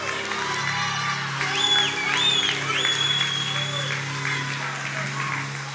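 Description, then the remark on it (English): A church audience applauds and cheers steadily for several seconds, dense clapping mixed with scattered whoops and shouts, at a moderate level. “I'm losing the claps.”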